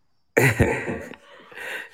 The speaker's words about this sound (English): it sounds like you're still sick. Are you still sniffing? Who, is that me? You? Yeah, that's you. I got allergies.